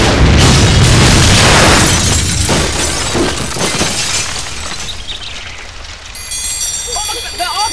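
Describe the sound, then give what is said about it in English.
A loud blast bursts out at once with crashing, shattering debris, then settles into a rough rumble that slowly fades over several seconds. “I thought I heard an explosion.”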